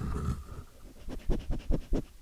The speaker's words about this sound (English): That would be Amethyst sniffing the microphone. He walked in here panting. Now you're not gonna pant now that I'm recording?